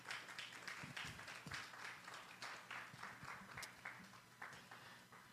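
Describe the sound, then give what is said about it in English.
An audience at a church service applauds steadily for several seconds to welcome visitors, a dense wash of many hands clapping, fairly loud and even, with no one speaking over it. “Why don't we give a hand clap and welcome those?”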